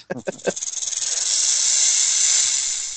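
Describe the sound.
A few short throaty bursts give way to a long, loud snake hiss that swells and holds steady, sharp, for a couple of seconds.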